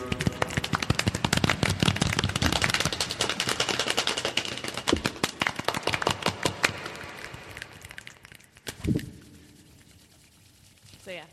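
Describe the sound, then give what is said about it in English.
A group going around in a circle mimics the beginning of a rainstorm by hand, with a dense, crackling patter of many overlapping claps and snaps that gradually thins out, followed by one last brief burst before fading. “It's supposed to sound like the beginning of a rainstorm, and then theater kids are like, yes, we did it.”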